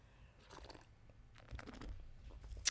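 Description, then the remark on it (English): Slurping sips of a fizzy soda drink, a mix of three drinks combined and topped off with Iron Brew, a few short wet bursts of sucking and swallowing noise, ending with a sharp click, with no talking. “A suicide sip of all three combined.”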